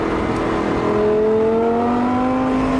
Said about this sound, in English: Sounds good. It does sound good. Is that the V10? Is that a Gallardo?